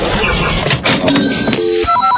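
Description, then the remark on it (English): A loud Channel 94.1 cash register sound effect from Omaha's hit music station: a burst of mechanical clattering and rattling, ending in a bright, ringing chime, with no one speaking. “Just listen for the Channel 94.1 cash register.”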